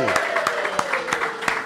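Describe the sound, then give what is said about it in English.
A short burst of applause: a handful of sharp, fairly evenly spaced claps ring out over a steady hum of voices and a sustained tone underneath. “But first of all, let's give ourselves a round of applause because this is the first night we're live on the internet.”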